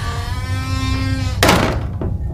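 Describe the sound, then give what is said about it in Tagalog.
A sustained creaking tone builds before a downstairs door slams shut around midnight, not closed gently, with one loud, sharp bang, followed by a short fading rumble. No one speaks. “10 minuto ang nakalipas at habang busy ako sa kaka-cellphone ay narinig ko na bumagsak ang pinto sa baba.”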